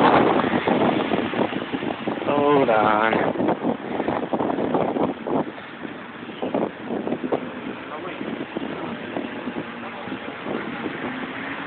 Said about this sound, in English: It's going to be really windy right here.